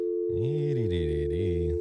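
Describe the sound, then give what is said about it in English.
A steady, continuous phone line tone hums loudly and evenly for the whole moment as a phone call is placed to a boss, with a wavering, hum-like tone sliding up and down over it partway through. “Calling our boss.”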